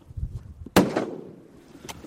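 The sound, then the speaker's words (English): A single loud rifle shot, fired by a hunter standing in a slowed boat on the tundra and killing a caribou, cracks out sharply, then trails off in a long, fading rumble. Low murmuring noise comes before it, and a fainter snap follows near the end. “stands up and sets his rifle, while his wife and son tense in anticipation.”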